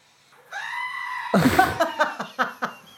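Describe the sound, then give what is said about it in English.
A goat lets out a long, wavering bleat, then a harsher, strained cry breaking into several short, quavering pulses, loud with no talk over it. “I'm going to play a goat noise.”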